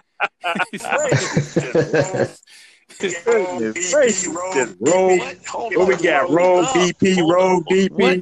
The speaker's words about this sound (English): Hold on, where all the echoing come from? I don't know. Where all the echoing come from?